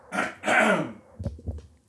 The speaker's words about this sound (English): Do you need to clear your throat? Are you good?